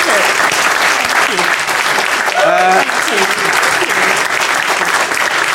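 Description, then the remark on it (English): Sustained applause from a large audience at a live event in London, thanking guest Suella Braverman. The clapping is a dense, steady wash, with a faint voice briefly audible partway through. “Ladies and gentlemen, please give a huge thank you to Suella Braverman.”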